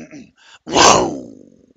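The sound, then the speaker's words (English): A person imitates a lion's happy chuff: a short breathy vocal burst after a couple of quiet murmurs, then one loud, rough, rumbling, muffled exhale that swells and slowly fades. “It was supposed to be a happy chuff, but chuffs tend to get muffled.”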